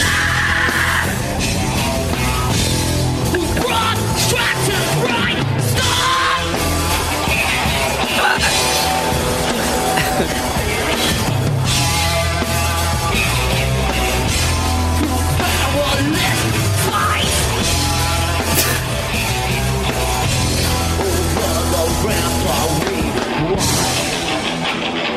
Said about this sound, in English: Listen to that crowd reaction.